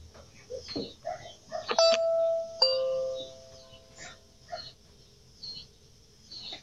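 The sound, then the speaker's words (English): A doorbell chimes twice, a bright two-note ding followed by a lower tone, each ringing out briefly before fading, recorded by a doorbell camera as a man walks up to a door and rings. Quiet rustling and shuffling noises fill the background around it. “So it's a guy doorbell camera walking up to a door, ringing.”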